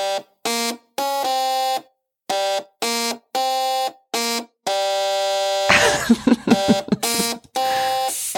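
A rock riff played on two buzzing electric toothbrushes, short droning notes stepping up and down in pitch, joined late by loud hissing, sputtering bursts from a steam iron. No one speaks.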